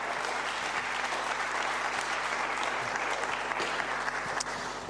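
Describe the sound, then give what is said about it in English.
A large audience claps steadily for several seconds, a dense, continuous wash of applause at full volume with no voices standing out, giving a round of applause for God. “Let's hear it for God. Give him a massive round of applause.”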